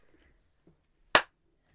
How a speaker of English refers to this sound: Thanks for the sarcastic round of applause.